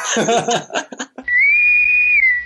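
Laughter gives way to a single clear electronic intercom whistle call, sounded at the press of a button to call people, a bright sustained tone that rises slightly and holds for about a second before cutting off, loud.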